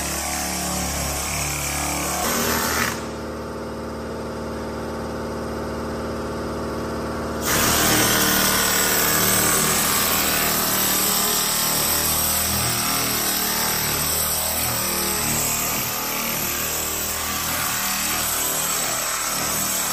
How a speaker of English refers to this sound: Aaron's been sanding on this thing